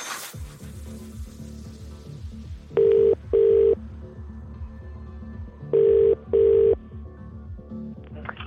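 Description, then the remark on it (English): A phone line rings out with two double-burst ringback tones, each pair a steady buzzing trill, clear and fairly loud over a low, rhythmic background bed, with no one speaking; a radio presenter's outgoing call to a Cash Hits contest player. “I'm going to make that phone call.”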